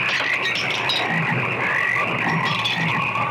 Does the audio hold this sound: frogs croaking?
yes